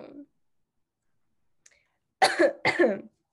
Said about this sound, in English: I'm coughing.